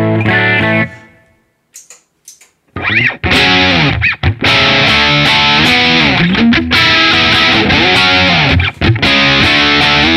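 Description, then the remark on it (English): A loud, heavily distorted electric guitar plays a short note, pauses, then launches into fast, bending lead licks in the style of a famous guitarist that ring out continuously, upfront with no voices, played on a newly acquired guitar. “So yeah, I haven't really warmed up to this guitar yet, but I like it.”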